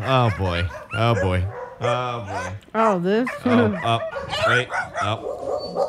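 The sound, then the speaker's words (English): Dogs bark and yip in short, excited bursts at the annual Yulin Dog Meat Festival, mixed in with a person talking over them. “It's the annual Yulin Dog Meat Festival.”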